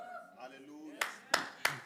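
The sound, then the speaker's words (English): A voice speaks briefly, then a group claps three sharp times in unison to praise God, in a quick steady rhythm, each clap loud and crisp with a short ringing tail. “For one, two claps.”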